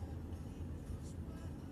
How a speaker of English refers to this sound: There's like all these pedals in the middle of the road, and this truck just came by and was going probably 40. Like you should be. He made them all fly up a little bit, and it was pretty fun.